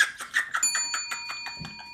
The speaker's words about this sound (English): Ring the bell.